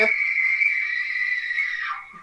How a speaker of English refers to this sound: Golly! The pumpkin started screaming.